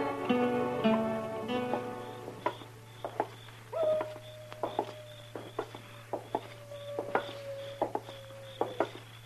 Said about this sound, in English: Except for that coyote. He's wailing his head off out there. Mad at the moon, I guess. Or in love, maybe.